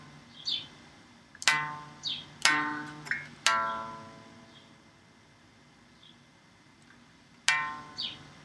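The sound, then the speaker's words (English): Short, high bird chirps recur every second or so, quiet and scattered, while a few loud plucked low string notes ring out and decay between them. “Hear the birds?”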